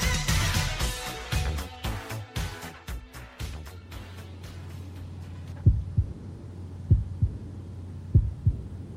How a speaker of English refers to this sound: The deathly heartbeat of part two.